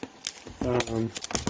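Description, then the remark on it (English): Crinkly rustles and sharp crackling bursts as plastic packaging is pulled apart by hand without scissors, with a voice straining briefly in the middle. “Actually, I'm gonna have to pull this thing apart. No scissors at all.”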